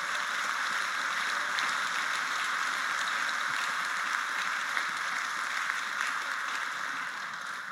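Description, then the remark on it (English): A crowd claps steadily for several seconds, a dense, even wash of many hands with no voices over it, holding at the same loudness throughout. “Yeah, and first, just because they won't ask for it, but they totally deserve it, can we just clap for these guys and honor them real quick?”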